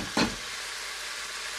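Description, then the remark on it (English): An egg fries in a frying pan with a steady hiss. A brief scraping clatter sounds near the start, and no one speaks. “Now this is when we begin to multitask, because I'm now going to fry my egg.”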